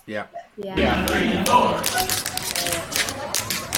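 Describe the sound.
Tap shoes clatter in quick, irregular bursts of sharp metallic clicks over a busy, murmuring crowd, after a short snatch of voice at the start.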